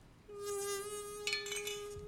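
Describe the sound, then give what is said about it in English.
A close, steady insect buzz starts almost at once and drones on without a break, a faint clink or two sounding in the background. “What is that? Is that a bee?”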